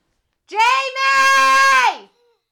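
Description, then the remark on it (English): A child lets out a single long, high-pitched scream from another room, wavering briefly near the start, then holding loud and steady for over a second before sliding down and cutting off. “Oh, they're screaming in the other room.”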